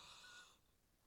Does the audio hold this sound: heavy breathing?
yes